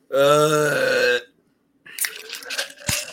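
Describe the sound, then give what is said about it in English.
A loud, drawn-out burp, about a second long, followed after a brief pause by scattered crackly, rustling noises. “No, that was a burp, dude.”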